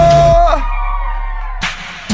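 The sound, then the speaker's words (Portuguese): A live audience lets out loud, noisy shouts in two bursts near the end, responding to the performer's call for those enjoying the show to shout, after a sustained musical tone fades over a steady low hum. “Quem tá gostando, dá um grito.”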